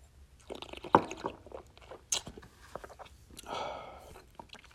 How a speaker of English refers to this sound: This one is inherently drinkable. I'm going to actually have another sip right now.